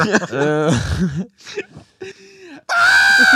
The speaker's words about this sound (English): Dude, that scream, that's like the loudest scream I've ever heard.